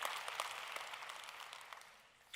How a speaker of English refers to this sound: By the way, if you're in the atrium today, thanks so much for hanging out with us. Will you help me applaud every person that's gathered in the atrium? Come on, somebody. Well done, well done, well done.